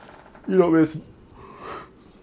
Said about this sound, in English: I just had to like suck up a yawn to talk.